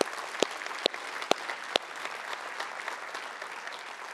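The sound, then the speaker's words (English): An audience applauds steadily, a dense wash of many hands clapping at moderate loudness, with a few sharper individual claps standing out early on before settling into an even patter. “Because, yeah, you can clap for that.”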